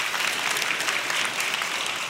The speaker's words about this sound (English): You can clap for that.